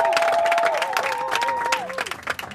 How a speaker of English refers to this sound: Clap for them. Clap for them.